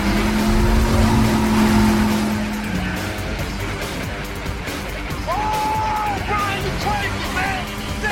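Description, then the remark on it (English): A car engine roars at speed with a steady droning pitch as the car races toward Carter's boat to jump onto it, followed by sharp rising squeals like tires skidding, all loud amid a busy, dense action mix with faint voices. “Brian and Roman then race toward Carter's boat to save Monica.”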